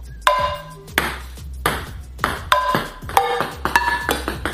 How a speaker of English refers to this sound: So I'm gonna sit there and then I'm gonna try and bounce a ping pong ball off there, then onto here, then off there, and then off here into this glass.